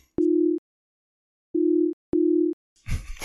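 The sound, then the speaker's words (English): A telephone ringback tone from an outgoing call: steady, low, humming bursts in a double-ring rhythm, loud and clear, before a voice starts to speak at the very end. “I make a quick phone call.”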